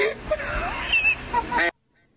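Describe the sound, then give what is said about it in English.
A chicken being taken for a walk squawks and clucks in a few harsh, honking bursts over a steady background hum, then the sound cuts off abruptly into silence. “So you said you're walking your chicken?”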